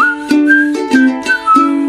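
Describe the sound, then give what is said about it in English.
A bright whistled melody moves through a handful of short notes, rising and falling, over a steady musical backing with soft rhythmic hits marking each beat. “Well, I'm in the mood for whistling.”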